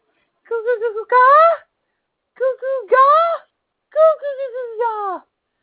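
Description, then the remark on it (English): A voice imitates a newborn baby, babbling and whimpering in three short bursts of wavering, sing-song cries with brief pauses between, clear with no other sounds. “Clearly this child is saying that it has plausible deniability because it is a newborn child.”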